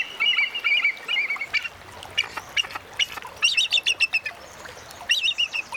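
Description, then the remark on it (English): A bald eagle calls in high, thin whistles and rapid chattering bursts of staccato piping notes, repeating several times, clear against a quiet background with no voices. “We leave you this week with a fisher who doesn't practice catch and release.”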